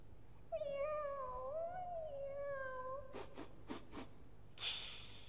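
A single long, drawn-out cat meow wavers in pitch for a few seconds, followed by a quick series of sharp clicks and a brief hissy burst. No one speaks.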